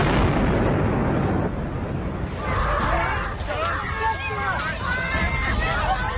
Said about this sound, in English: On April 15th, 2013, the atmosphere at the Boston Marathon was typically festive. But at 2:49 p.m., there was a terrifying explosion.